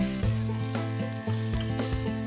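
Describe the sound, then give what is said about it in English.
Chicken sizzles on a grill as it turns golden, a steady, dense crackling hiss that runs unbroken for a couple of seconds, with a low humming tone underneath and no voices. “Now, with the chicken on the grill here reaching its golden point of perfection and the slight amount of dew forming on my beard tells me it's time to start this meditation with the chicken.”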